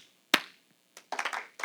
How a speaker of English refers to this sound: Two claps.